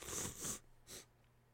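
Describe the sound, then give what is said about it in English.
A sneeze: a sharp, hissy burst of breath lasting about half a second, followed shortly by a second short, breathy puff. No talking alongside it. “1 point is if the opponent... sneeze. I think I'm allergic to Beyblade.”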